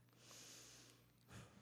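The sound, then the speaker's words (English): A long, breathy sniff at a burger, a steady airy hiss for about a second, followed by a short, sharper snort-like exhale. No one speaks. “I'm gonna sniff this one.”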